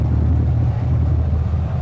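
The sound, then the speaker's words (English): Trucks rumble past on a road, a loud, steady low-pitched roar of engines and tires that holds constant throughout, with no voices. “here, hold on, I'm away from these cars. Some trucks.”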